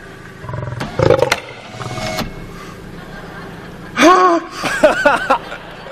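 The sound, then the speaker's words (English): A few heavy thuds against a window, then a 500-pound lion's deep, rumbling roar and growls, loud and harsh over a low background hum. “So when you encounter a 500-pound lion, right, and that runs across your visual cortex”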